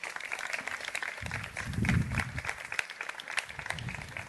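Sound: audience applause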